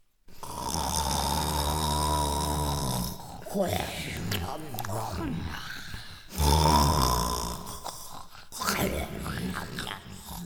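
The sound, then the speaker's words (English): Loud, exaggerated snoring: two long rumbling inhales, each followed by a breathy, wheezing exhale, voiced by a person imitating the snore of the sleeping Cyclops giant Polyphemus in his cave. “And then Polyphemus began to snore.”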